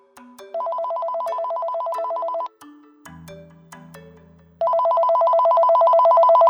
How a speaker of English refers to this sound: My phone rang.